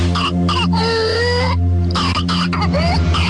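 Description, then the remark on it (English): A child's whooping cough (pertussis) fit: rapid bursts of harsh, racking coughs broken by high-pitched, strained gasping inhales, loud, with a steady low hum underneath. “It's pertussis, whooping cough.”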